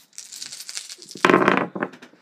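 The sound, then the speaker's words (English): Dice rattle and clatter, a brief shaking rattle followed by a louder tumble across a hard surface, with a couple of final clicks as they settle. “So let's see what the dice have to say about that. So we'll roll for Malcolm Death Squad.”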